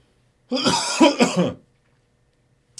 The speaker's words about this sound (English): And then I come in here stifling a cough until...